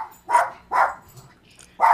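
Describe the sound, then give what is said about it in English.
A dog barks three times in sharp, loud bursts, the first two in quick succession and the third after a short pause, with no one talking. “Dogs are livid about this Ring of Honor. I think your dog just ended the show.”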